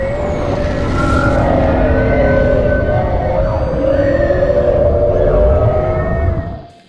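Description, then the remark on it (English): The Bloop ocean sound: a dense, deep rumble overlaid with wavering, moaning tones that slowly slide in pitch, loud and steady for about six seconds before fading out. “This is the bloop, but it sounds like hell.”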